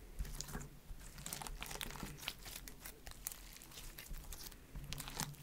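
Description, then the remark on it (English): Soft, slightly sticky slime being squished and crunched, a dense stream of crackly, popping snaps over a soft wet squelch, steady and moderately loud throughout with no talking. “ASMR Satisfying Slime Triggers (whispering, squishing, crunching)”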